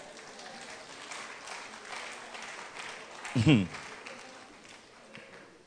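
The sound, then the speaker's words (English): An audience claps in a steady, dense patter that holds throughout, broken by one louder low thump partway through, with indistinct voices mixed into the crowd noise. “Whether you clap or not, that is what the word of God says.”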